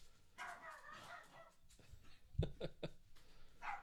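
A dog gives a quick burst of three or four sharp barks in close succession, after a stretch of faint muffled background noise.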